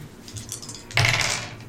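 A pair of percentile dice, rolled as a D100, hit a hard tabletop with a sudden clatter, then rattle and tumble briefly before settling. The sound is fairly loud, with no one speaking.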